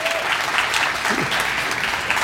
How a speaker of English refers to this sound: Give this man a big round of applause.